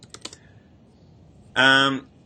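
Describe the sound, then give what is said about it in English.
A few quick clicks of typing on a computer keyboard, followed after a pause by a short, loud voiced hum from someone. “So I'm just typing this in.”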